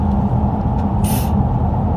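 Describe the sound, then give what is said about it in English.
Steady low rumble of road noise inside a moving car, continuous throughout, with a brief sharp burst of hiss partway through; no one speaks. “Our car noise will seep into their car noise.”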